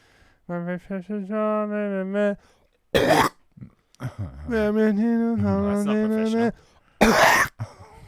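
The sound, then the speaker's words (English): A voice imitates a school singer wearing a small lapel mic: two harsh, hacking coughs, each a short loud burst, separated by long sustained sung vocal notes, clear. “She had a hacking cough.”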